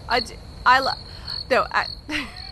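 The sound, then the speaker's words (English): A steady, high cricket trill runs throughout, with several short croaking, frog-like calls popping up over it at uneven intervals, like a quiet night ambience. “Where are the crickets?”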